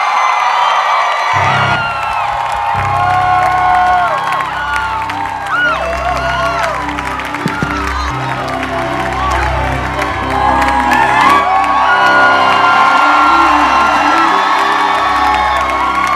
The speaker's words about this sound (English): So tonight, let's welcome Dr. Sonny Badu to come and minister powerfully to us, and then give him a clap, give him a shout.